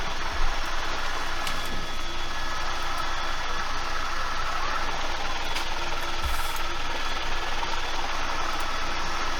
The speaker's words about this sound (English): but it's a guy, it's a couple dudes in a helicopter driving around, flying around, and just everything's burnt.